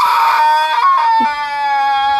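A shrill, piercing screech of a baby pterodactyl still in the nest, one continuous cry lasting about two seconds, loud throughout with a raspy, wavering pitch that dips briefly midway before holding steady.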